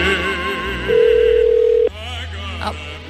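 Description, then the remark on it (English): A single steady telephone ringback tone sounds for about a second, loud, over a faint bed of background music and murmuring, as the call goes unanswered. “It's still ringing. Will it continue to ring? There's no answer.”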